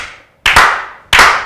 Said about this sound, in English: Can we slow clap the brother out, please?